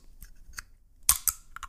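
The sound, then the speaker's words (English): A can of Zoa Healthy Warrior Energy Drink is opened: a few light metallic clicks as the tab is lifted, then a sharp double crack with a brief fizzing hiss, followed by faint clicks. “So let me just get the tab on this puppy and...”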